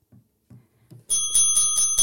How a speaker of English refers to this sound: Are you touching the bell?